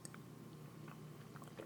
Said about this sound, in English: I'd say this Pinot Noir from Love Noir is actually my second fave of a cab. So love her. I'm gonna take another sip.